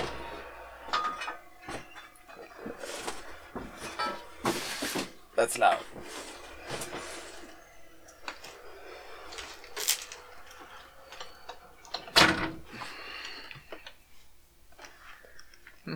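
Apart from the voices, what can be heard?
window being closed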